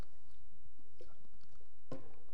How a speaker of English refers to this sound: I love the freedom of this, because we don't always know, like, was it God's will that I pick up this water bottle and like take a drink out of it right now?